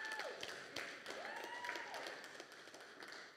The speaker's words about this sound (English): yeah, you can clap there.